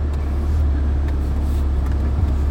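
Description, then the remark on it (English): A car's engine rumbles low and steady as it slowly backs up at a gas station in Maine early in the morning, among workers' trucks crowding the place, with a faint wash of traffic around it and no voices. “And, hold on, I'm backing up. I don't want to hit these guys.”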